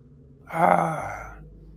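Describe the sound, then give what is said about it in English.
A single sharp, breathy gasp from a listener in the audience rises suddenly, moderately loud, then trails off into a soft exhale over a quiet background with no talking. “That's a gasp. That's a gasp over there.”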